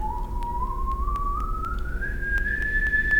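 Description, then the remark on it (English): Someone whistles a single clear note that climbs steadily higher over a few seconds, like an ascending scale, with no talking and faint ticking in the background. “Well, but if you whistle a scale, usually you just keep shortening your vocal tract.”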